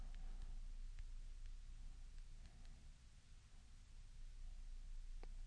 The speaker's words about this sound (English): I said, wow, I just, don't worry, I'm just typing on the fly, flying and typing.